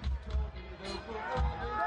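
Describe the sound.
A concert crowd roars and cheers in a dense, steady wash of voices, with deep low thumps underneath and faint musical tones threading through the noise.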